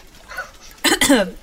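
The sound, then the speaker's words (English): A faint murmur gives way to two quick coughs, the second one harsher with a short voiced, throaty tail before it fades out. “Just cough if you understand this message.”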